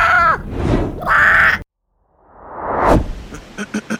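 A crow caws harshly and loudly twice, followed after a short silence by a rising whoosh and a few quick flapping beats.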